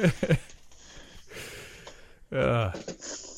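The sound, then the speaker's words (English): Rough, rasping snores rise and fall with breathy inhales between them, a few uneven snorts over a few seconds, fairly loud. “The snoring in the back.”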